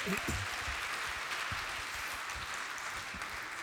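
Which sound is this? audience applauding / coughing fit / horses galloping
audience applauding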